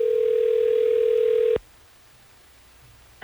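A steady telephone line tone hums loudly for about a second and a half, cuts off abruptly into near silence, and then a voice briefly starts right at the end. It is a phone call placed by radio station Hot 101.5 to a listener.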